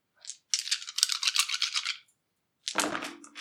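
Seven dice rattle in a steady, clicking shake for about a second and a half, then after a short pause clatter and tumble loudly across a hard surface.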